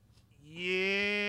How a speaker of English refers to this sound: Man, they really went all out with that updated roar. Yeah. Do you hear about all the technicalities that they did to update it and whatnot?